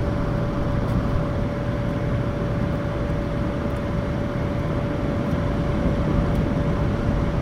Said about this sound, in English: Yes, I can hear the frying process is pretty well underway. I don't know if you can hear the actual process.